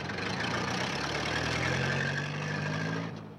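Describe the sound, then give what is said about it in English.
The engine of a car almost 20 years old idles steadily with a low, droning hum and faint rattle, holding even for about three seconds before cutting off near the end. No voices. “That car's got to be almost 20 years old by this point.”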